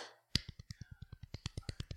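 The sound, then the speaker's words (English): A small round of applause: one person claps quickly and steadily, around fifteen sharp claps over under two seconds, after a brief rustle, with no voices. “That deserves a small round of applause.”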